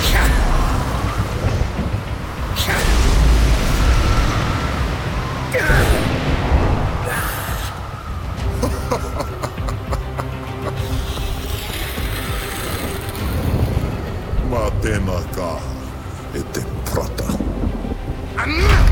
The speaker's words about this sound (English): And so my sons engaged in battle. Tawhiri Mātea throwing gusts of wind at Tūmātauanga with pelting rain and hail.